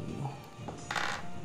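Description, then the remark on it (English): A quick clatter of many dice tumbling across a table, a short rattling burst after a faint knock, fairly quiet with no voices over it. “That's a lot of dice.”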